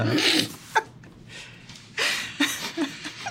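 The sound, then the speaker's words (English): A voice imitates sniffing with a few quick, breathy nasal sniffs in bursts, moderately loud, separated by short pauses. “sniffing around.”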